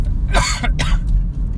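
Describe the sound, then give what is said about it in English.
A loud cough in two harsh bursts, one right after the other, over a steady low rumble in the background with no one talking. “sorry if my cough was really loud and it hurt it made your like earphones fuzz or something.”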